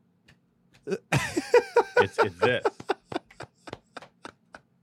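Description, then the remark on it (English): Light, thin, limp-wristed hand claps, all wrist, tap out a steady, slightly quickening rhythm as a demonstration, about a dozen in all, following a burst of laughter and brief talk and then continuing on their own. “A straight man doesn't clap like this.”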